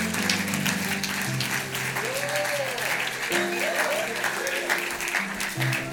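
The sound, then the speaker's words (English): A crowd claps steadily in a sustained round of applause as two boys, brothers, come up to the stage. The applause is dense and loud throughout, with faint voices and a few rising whoops or cheers mixed in. “Let's give them a round of applause as they come.”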